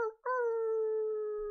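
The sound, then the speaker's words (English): A wolf howl rises after a brief onset and holds as a long, steady, mournful tone with clear harmonics, loud, with no other sounds around it. “Finishing off with a wolf howl.”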